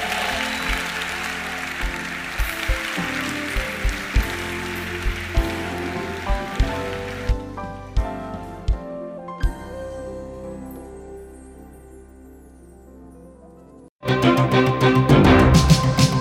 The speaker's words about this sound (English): Give Jesus a good clap offering.